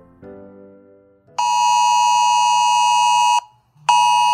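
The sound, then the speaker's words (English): A mobile phone emergency weather alert warning of impending flash floods or high winds blares a loud, harsh, steady buzzing tone for about two seconds, stops briefly, then starts again, after a softer, lower tone at the start. “Okay, even if you're dead asleep, the sound of a weather alert on your mobile phone warning of impending flash floods or high winds will surely wake you.”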